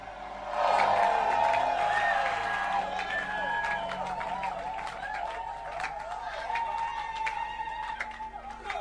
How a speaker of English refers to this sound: Shout, I receive it. I think you have to do that. I think you have to clap your hands. I think you have to shout.